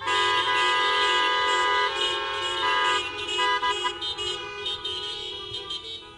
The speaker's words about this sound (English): But I thought it might be fun if we all honked our horns for like 10 seconds to pass the peace with everyone's here. So on the count of three, let's just honk our horns. Ready? One, two, three.